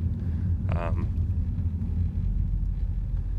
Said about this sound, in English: And the reason I say that right now is because I'm driving and I just cut somebody off to merge into their lane.